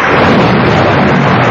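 A loud, unbroken wash of heavy rain fills the whole moment, with a deep thunder-like rumble rolling underneath and no voices.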